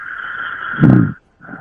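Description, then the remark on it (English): A caller's single loud, rasping snore comes through a radio call-in show's thin, tinny phone line over a steady electronic hiss, then the line drops silent for a moment before the hiss resumes. “The snoring has changed.”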